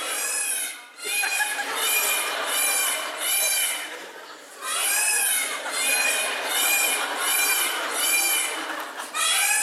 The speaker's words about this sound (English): Because one of the other things that I forgot to tell you about this particular park is that it was known for having live peacocks. And that leads me to ask you, have you ever heard a peacock scream? Then watch this if you haven't.